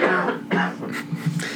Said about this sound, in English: Yeah, every once in a while from being sick, I'm still coughing. I have cough drops. Do you need to cough? No, it's just random.